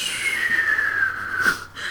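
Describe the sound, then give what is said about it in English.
A voice fakes a snore, letting out a breathy, whistling exhale that slides gently downward in pitch, moderately loud, with a brief sniff-like intake near the end. “Snoring, not listening. Sleeping. Talking in my sleep. Faking sleep.”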